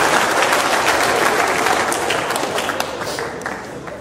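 An audience applauds a person after a Bible reading, a dense wash of many hands clapping at once, loud and sustained before tapering off slightly toward the end.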